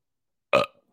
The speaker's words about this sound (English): I just burped.